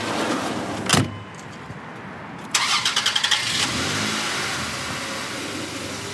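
A sharp clack, then a post office mail truck's starter cranks in quick rhythmic bursts before the engine catches and settles into a steady idle; no one speaks.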